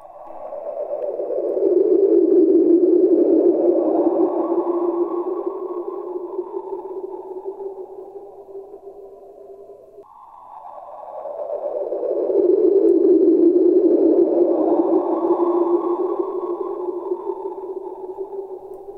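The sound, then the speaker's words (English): Two matching eerie, sonar-like tonal sweeps, a sonification of bursts of bright X-ray light from a feeding black hole echoing off infalling gas, each about ten seconds long, swelling and then fading. Their pitch glides downward and then settles into a low hum, with no voices present. “When a black hole feeds on this material, it produces bursts of bright X-ray light that bounce and echo off in the falling in gas.”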